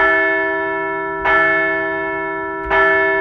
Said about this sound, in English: Hey, let's ring the bell for another extra innings victory.